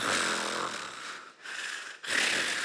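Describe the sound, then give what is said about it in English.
A man pretending to fall asleep in front of his playing children fakes loud snoring, giving two long, raspy inhaled snores with a brief gap between them and no spoken words. “So they were playing, then I just go and I start snoring like.”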